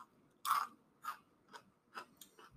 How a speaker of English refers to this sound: So I'm going to open the bag. Asmer. I can't believe you've never had them before. No, I'm really excited. I've had enough for all of us. Here I go. This is my first Takis ever. Super crunchy.